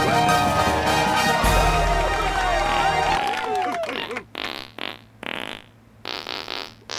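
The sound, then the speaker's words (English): Layered, buzzing fart tones perform a self-written melody as a round, pitches bending and stacking densely at first, then thinning into a few separate sputtering bursts with gaps between. “This is my round, and I farted out in a round.”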